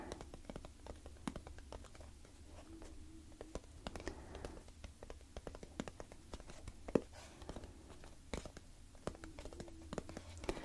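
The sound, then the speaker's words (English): Soft rain pattering, an irregular stream of light taps and drips over a low, steady background rumble, with no voices. “I think the rain is one of my all-time favorites.”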